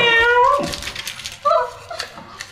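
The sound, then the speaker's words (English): A person imitates a cat, giving a long, whiny meow followed by two shorter mewing calls, fairly loud with no other talking. “I don't have a cat. Fuck it. I've got a monkey. I've got a monkey cat.”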